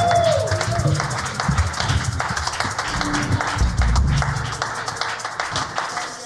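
An audience claps steadily for several seconds as two guests come to the stage, a dense patter of many hands with a few whoops mixed in, moderately loud and sustained without a clear stop.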